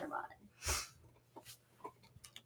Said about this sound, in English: Are you playing your bone? Oh, yeah. There's probably some background noise from dog chewing bone.